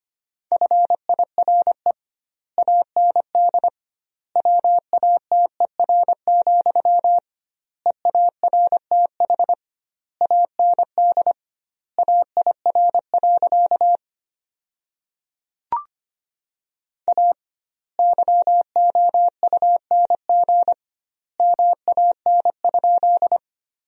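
Morse code practice tones at 25 words per minute, sending sentences from the top 400 words with doubled word spacing: a steady, mid-pitched beep keyed rapidly into short and long pulses, grouped into words with clear pauses between them, plus one brief click midway and no voices.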